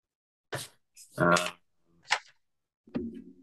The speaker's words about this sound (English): My paper flipping.